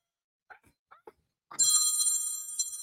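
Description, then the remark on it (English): A phone rings loudly with an incoming call, a bright, sustained electronic ringtone that starts suddenly after a few soft clicks and taps, continuing steadily to the end. “Now they're trying to call me.”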